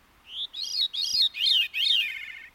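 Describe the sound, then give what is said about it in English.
A veery, a songbird, sings a fluting, spiraling song in four quick descending phrases, the two sides of its syrinx producing two separate melodies at once, one rising while the other descends, clear with no other sounds. “That lets some songbirds, like this veery, sing two separate melodies at the same time.”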